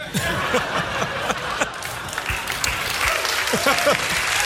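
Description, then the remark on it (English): A crowd claps during an applause break in a performance: dense, continuous applause with scattered chuckles and a few voices mixed in, lasting throughout at a fairly loud, even level. “That didn't deserve an applause break, I don't think.”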